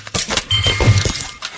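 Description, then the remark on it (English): A burst of shattering glass with bright, tinkling shards scattering over about a second and a half, loud, a smashing effect from a video game in which toasters shoot toast at a ball and break glass. “So it's Pong, except for you have to shoot your toast at the ball. Yep, and you got to break glass.”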